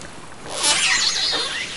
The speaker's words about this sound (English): Those are killer whales. They were recorded in April swimming by the hydrophone that the National Park Service has installed down at the bottom of Glacier Bay.